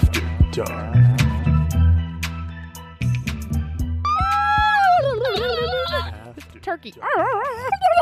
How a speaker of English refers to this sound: That's what, by the way, that's what Michelle's cat sounds like when she's eating. No, it's more like, yeah. Anyway. We would like to know if anyone else's cats make that noise while they're eating.